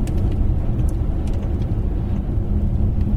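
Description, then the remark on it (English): An S-Class luxury car pulls away with decent urgency, its deep engine and road rumble loud, holding a steady, smooth drone for a few seconds with no voices. “I wouldn't say that I'm pinging away like a race car from roundabouts, but I'm certainly pulling away with decent urgency.”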